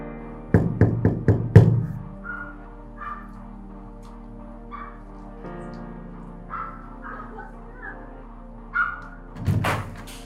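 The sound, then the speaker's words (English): Four quick, firm knocks on a door by people arriving to deliver a car to a woman, in a rapid, even rhythm, followed by quieter sounds and a couple of brief louder bursts near the end. “I'm like, who's knocking on the door?”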